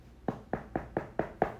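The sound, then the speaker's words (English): Six quick, evenly paced knocks on a door, sharp, with no voices. “But he'll come knocking on the motherfucking door and stuff like that.”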